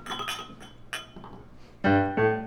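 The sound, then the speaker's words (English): Glasses clinking together in a toast: a few light taps, then two bright clinks that ring out with a sustained glassy tone near the end. No one speaks. “To being in the circus and loving each other. And always having each other's backs. Cheers. Cheers.”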